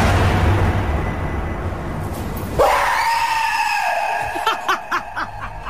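In a prank, a door slams shut behind a woman heading down stairs to her car, with someone in a scary mask running at her: a sudden sharp bang breaks through steady rushing noise, followed at once by a long, high-pitched scream and then a series of short, choppy shrieks.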